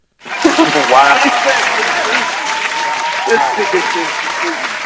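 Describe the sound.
A steady round of applause starts abruptly and holds at a loud, even level for several seconds, with dense clapping and a few faint voices mixed underneath.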